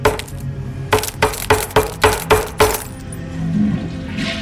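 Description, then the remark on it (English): A series of sharp knocks as a glass marble is pounded repeatedly with a mallet on a wooden cutting board, about seven rapid blows with glassy clinks, then a brief scattering rattle as the marble shatters. “I got a mallet and pounded the marble on a cutting board until it shattered.”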